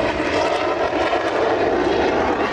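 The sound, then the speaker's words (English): A departing MiG-17 jet aircraft's engine roars loudly and steadily with a big fiery plume out of the tail, a dense rushing blast that holds constant throughout with no voices over it. “Oh, it's a MiG. It's a MiG. MiG 17. With a big fiery plume out of the tail.”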